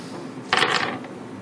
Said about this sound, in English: Roll your dice.